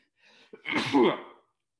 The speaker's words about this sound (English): Pause. Needed to sneeze. Sorry about that.